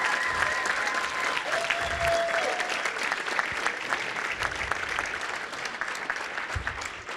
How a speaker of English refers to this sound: So why don't you give her a round of applause?